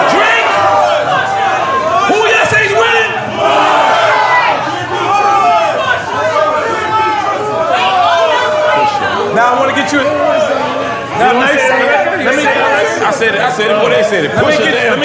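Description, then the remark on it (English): A live crowd of many voices shouts answers at once to the question of who is winning a battle, a dense overlapping roar of people yelling that stays steady for the whole stretch. “I'm asking the crowd too. Who is winning this battle?”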